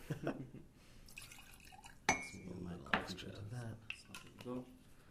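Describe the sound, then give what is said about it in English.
Someone mixing a whiskey-based cocktail, combining the whiskey with other ingredients: a few sharp, ringing clinks of utensils against glass, with trickling, dripping liquid and soft clatter between them. “So as I'm combining the whiskey and the...”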